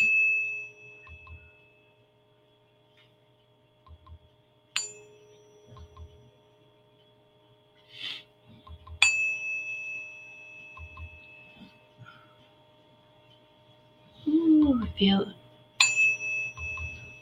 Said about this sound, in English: So what I'm going to do is I'm going to play the 432 tuning fork, 432 cosmic heart, 432 hertz is the cosmic heart sound. So I'm going to play this. You'll feel the vibration just whether you hear it or not